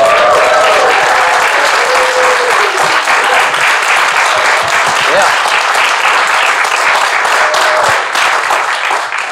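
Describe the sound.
An audience breaks into a sustained round of applause, dense overlapping clapping that stays loud and steady for several seconds, with a few faint voices and whoops mixed in.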